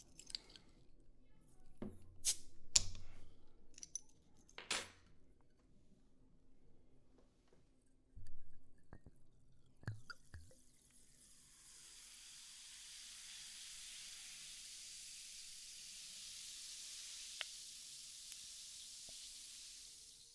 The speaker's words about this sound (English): Now I'm going to open a bottle of the soda water.